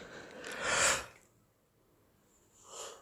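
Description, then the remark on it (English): A breathy yawn swells and fades over about a second, followed by a quiet pause and then a softer breath near the end. No one speaks. “That's another yawn.”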